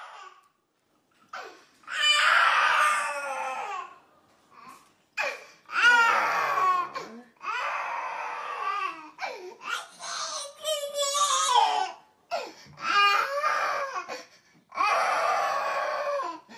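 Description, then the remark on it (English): A young girl screams and cries in loud wailing bursts, each lasting a second or two, separated by brief gasping pauses, continuing steadily throughout, as her father leaves the house. “She just starts screaming and shouting. Here's a little video of what happens when I leave.”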